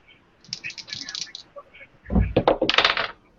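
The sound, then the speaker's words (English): Dice rolled for a resistance check in a tabletop role-playing game clatter in two bursts: first a light, quick rattle, then a louder tumble of hard clicks and thuds on a table, lasting about a second. “Give me a roll. You want a 20 or less?”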